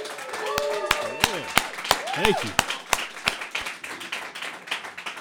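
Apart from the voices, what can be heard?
audience applauding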